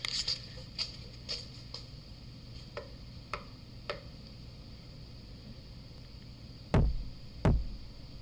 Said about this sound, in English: In the audio, you'll hear me show the spirit how to knock on the columns, and then we get a very defined answer. I'll even show you how easy it is to knock on one of these support beams.